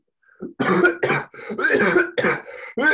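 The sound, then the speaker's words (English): A rapid string of loud coughs, five or six harsh bursts in quick succession, right into the microphone during a Zoom recording, with no talking. “Yeah, I only cough into No, the mic, so you know.”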